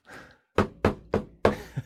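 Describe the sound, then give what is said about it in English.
A miniature hammer raps like a gavel: four sharp, evenly spaced wooden knocks, loud and quick, after a soft rustle, with a faint tap trailing the last strike. “You have a hammer.”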